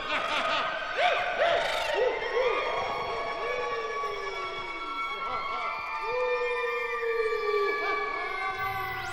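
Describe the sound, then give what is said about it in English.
Eerie, wavering high-pitched shrieks and wails slide up and down in overlapping layers, sustained and fairly loud throughout, like a chorus of ghostly screeching voices. “They sneaked around and made ghostly sounds. They screeched. And they shrieked.”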